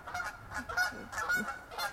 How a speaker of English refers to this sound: Hey geese, they are landing.